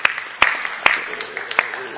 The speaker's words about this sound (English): So at this point, I feel like breaking out into happy birthday, but I think we can just give her a round of applause.